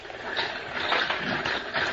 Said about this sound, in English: Captain Kennedy's schooner was just sailing into the cove